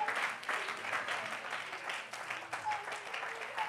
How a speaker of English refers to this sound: I believe you want it. Oh, would you clap your hands and love him?